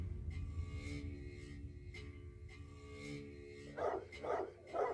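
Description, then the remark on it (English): Three sharp, agitated barks burst out in quick succession near the end as dogs fight, loud, over a steady low droning background, with no voices. “Your dog was gonna rip my dog's throat out.”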